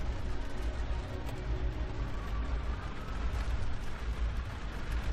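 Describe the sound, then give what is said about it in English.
A steady, deep rumble of storm thunder rolls on without pause, heavy in the low end with a hissing wash of wind and rain over it. No one speaks. “Storm's getting worse.”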